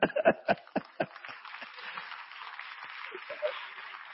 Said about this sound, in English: You see, women are the ones clapping and little men.